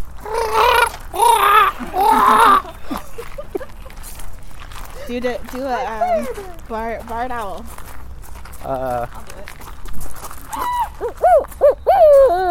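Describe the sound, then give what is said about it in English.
A human voice imitates a blue heron with three loud, harsh, raspy squawks in quick succession, followed by wavering, sing-song vocal sounds and people talking. “You need animal impersonations for your podcast? Yeah, boy! Blue heron.”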